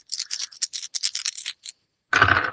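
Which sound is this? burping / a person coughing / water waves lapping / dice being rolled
dice being rolled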